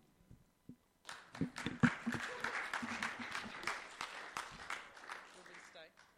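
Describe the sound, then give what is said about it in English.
A church service audience breaks into steady applause after a brief pause, the dense clapping holding for about five seconds before thinning out, with a few voices mixed in. “He doesn't get clapped at the end of his sermon.”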